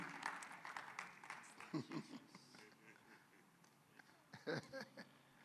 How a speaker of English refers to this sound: Are you clapping your hand for Jesus?